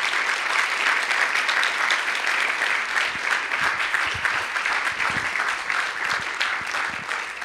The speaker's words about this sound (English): So, if you would, please join me in a round of applause for our teachers.